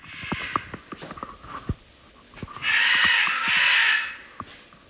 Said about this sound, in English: What is that? Outside my window, there's a parrot. It sounds like it's screaming, "Oh my God." I found out later that this parrot belonged to the Fellowship's leader, Robert.